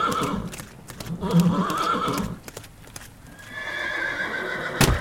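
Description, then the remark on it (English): A horse whinnies loudly and shrilly while hooves clop in an irregular, scrambling rhythm, ending with a sharp impact as a hoof gets caught and the horse falls with its rider, General Ulysses, in dark woods during a lightning storm. No one speaks. “One of the horse's hooves gets caught, taking the poor creature down.”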